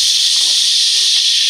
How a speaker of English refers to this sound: Into the shower.